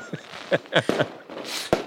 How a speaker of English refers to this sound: Why are there fireworks going off behind you?